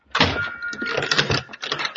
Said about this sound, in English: I stepped over and tried it. It was unlocked. I drew my gun and pushed the door open.